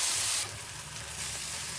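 Steady, crackly sizzle of thick, already roasted bologna frying on a hot griddle, a bright hiss that is louder for the first moment, then settles into a continuous sputter with no voices.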